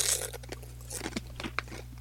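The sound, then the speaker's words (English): Crisp crunching of Pringles potato chips, a handful of sharp irregular bites over about two seconds, fairly quiet, with a steady low electrical hum underneath and no talking. “We have Why It's Pringle Crunching, yep.”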